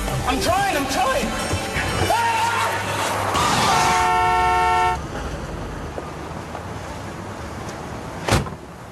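A car's brakes squeal sharply as a pedestrian steps out in front of it, followed by a loud, sustained horn blast lasting about a second, before things settle into a quieter background with one brief sharp noise near the end.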